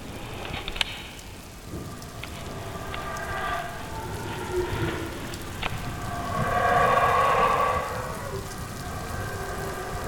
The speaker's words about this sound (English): We were following the sound of some howler monkeys.